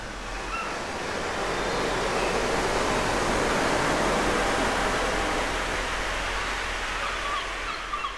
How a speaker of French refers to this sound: Et si je vous disais que je suis capable d'amener la mer à Paris ? Je crois que je vais ajouter un peu plus de mouettes. Je peux aussi ralentir les vagues.